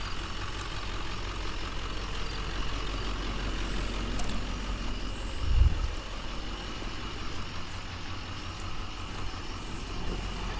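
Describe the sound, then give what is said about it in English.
A vehicle engine runs steadily, a low continuous rumble with a brief surge of revving partway through as it pulls into a level spot at a campsite. No one speaks. “So I think what I'll do is go out and just get in and pull it in.”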